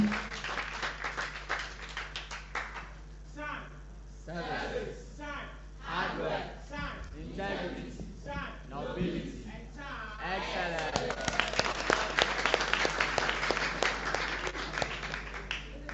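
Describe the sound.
A crowd at a debate claps steadily to welcome a supporting speaker, the applause dipping while voices and cheers rise in the middle, then swelling again into loud, dense clapping at the end.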